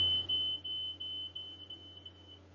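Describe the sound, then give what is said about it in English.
A house fire alarm, which goes off if it gets vaguely warm, shrieks with a steady, piercing high-pitched tone that holds for a couple of seconds, not very loud, over a low background hum with no one talking. “Sorry about that, we have a fire alarm that goes off if it gets vaguely warm in the house.”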